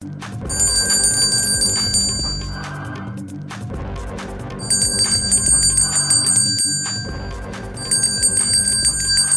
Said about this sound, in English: So you may be asking what I'm doing. Well, I'm going to ask our first guest. Why the bells are ringing.